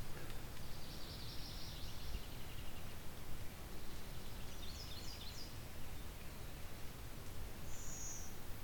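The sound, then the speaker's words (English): Faint blue-winged warbler bee call: thin, high, buzzy notes rising out of a steady outdoor hiss, a couple of brief wheezy phrases spaced several seconds apart, with no talking. “It's the bee call from the blue-wing warbler.”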